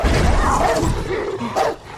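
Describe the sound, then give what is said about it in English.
A guard dog barks loudly and aggressively at people sitting in a car on a stakeout, a couple of harsh snarling bursts over a rough, noisy background, with no talking. “So yeah, they were jump scared by the dog.”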